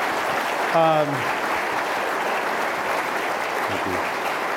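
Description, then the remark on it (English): Steady crowd applause in San Francisco for a visiting national Republican leader fills the whole stretch as a dense, even patter of clapping, with a short falling cheer rising above it early on and a fainter voice briefly heard later. “So just coming here and being with us today, I think, is something to be applauded.”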